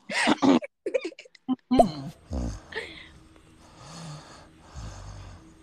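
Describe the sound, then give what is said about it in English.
A few brief vocal sounds at the start give way to a man's low, rasping snores, several slow drawn-out breaths in a steady rhythm, moderately loud. “Is he snoring?”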